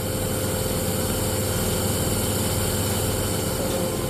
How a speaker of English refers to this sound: So that's the nebulizer being turned on? Yeah.